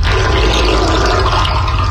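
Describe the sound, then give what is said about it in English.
Water gurgles and rushes steadily down a freshly cleaned bathtub drain, forming a small vortex, a loud, continuous swirling drain sound with no talking. “Listen to how clean my drain is after.”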